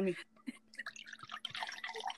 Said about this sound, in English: That's me pouring this wine while I talk.